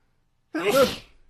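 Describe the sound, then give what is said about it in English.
A single sharp sneeze bursts out after a moment of silence, loud, with a breathy, voiced rush that quickly fades. “Oh, yeah, sneeze.”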